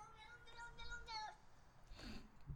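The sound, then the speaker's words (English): A cat gives a drawn-out, wavering meow, then a shorter second cry, followed by a burst of breathy noise. The sound is fairly quiet, with no talking over it. “No, I knew that was a real cat.”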